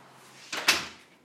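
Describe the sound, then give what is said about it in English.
A door opens and then shuts, two quick wooden clunks a fraction of a second apart, moderately loud, with a brief rattling decay and no voices. “I'm going to go escort you to the door.”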